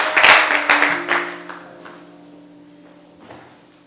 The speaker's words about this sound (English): Clap your hands together for the Lord as you take your seats.